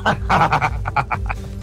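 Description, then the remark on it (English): A bullfrog croaks in a quick, uneven series of about eight or nine harsh, throaty pulses, fairly loud over a steady low rumble, with no talking. “It's Bonnie the fucking bullfrog.”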